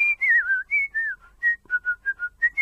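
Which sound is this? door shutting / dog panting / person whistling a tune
person whistling a tune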